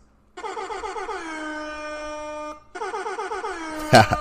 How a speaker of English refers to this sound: Hold on. Let me hit the air horns for myself.